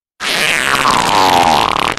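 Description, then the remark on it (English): A drawn-out, buzzy farting noise from a squeezed toy animal, one of a collection of farting animal toys kept on a mantelpiece, loud and continuous for nearly two seconds with a wavering, slightly falling pitch and a sputtering finish. “in the collection of farting animals that you will keep sending in and now live on my mantelpiece, that there was a farting toad.”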